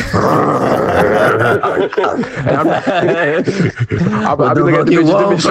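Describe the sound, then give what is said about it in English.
A man makes gruff growling and grunting noises in a rough rhythmic burst for several seconds, imitating a rapper's signature growl with his voice. “Look at bad women with a … growl face.”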